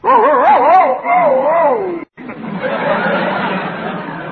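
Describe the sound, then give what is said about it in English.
A person imitates a male dog answering a female dog's call with a wavering, warbling howl for about two seconds, then after a brief pause gives a rougher, breathy growling yammer, fairly loud. “The boy dog answered like this.”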